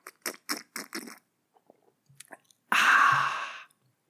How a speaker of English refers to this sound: That is the first grievance down, and so I'll take a little reward sip of my whiskey, which sounds a little something like this.